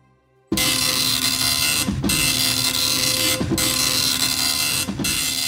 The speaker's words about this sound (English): Each time I hear this dot matrix printer going to and fro, I am asked to hand over the ticket money, and then that elusive ticket is handed over to me.